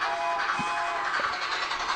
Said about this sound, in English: Where's your choo-choo train sound? We need that.